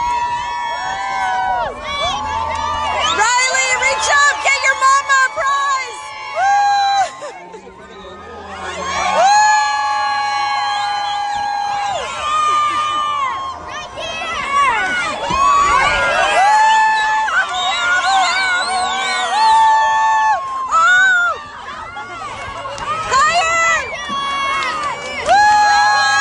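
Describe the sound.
A stadium crowd at a high school football game cheers wildly as prizes are thrown into the crowd, a loud, sustained roar of overlapping shouts and high-pitched whoops, many from children, while a woman's voice calls out over the din.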